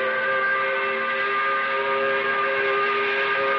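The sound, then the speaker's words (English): A loud, steady five o'clock factory whistle blows continuously, a sustained multi-toned blast holding at constant volume with no pauses and no voices. “We put the spotlight on this very time of the week. We do it by blowing the 5 o'clock whistle.”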